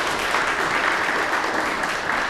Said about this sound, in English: Hi, I'm going to pretend that was welcome applause for me. Just kidding. Just kidding.